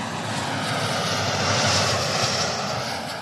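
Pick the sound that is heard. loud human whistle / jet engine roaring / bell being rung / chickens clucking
jet engine roaring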